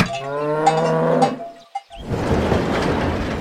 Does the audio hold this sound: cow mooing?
yes